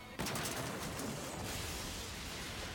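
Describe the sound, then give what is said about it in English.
A sudden loud explosive burst from an explosion sound effect, not a real explosion, kicks in and rolls on as a dense, crackling rumble with scattered popping, like a sustained blast with debris, staying loud throughout. “That's not too bad an effect, actually. I mean, I know we can tell it's not a real explosion, but actually looks all right.”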